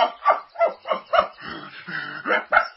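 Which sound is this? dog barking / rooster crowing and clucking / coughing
dog barking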